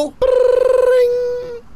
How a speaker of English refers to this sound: Let me get that phone.